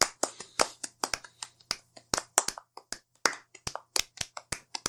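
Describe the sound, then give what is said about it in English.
Applause from an audience, a 5 to 10 second round of applause for the person who built DDT: a brisk, uneven stream of sharp, crisp hand claps continuing for about five seconds, fairly loud, with no voices. “A 5 to 10 second round of applause for Glenn,”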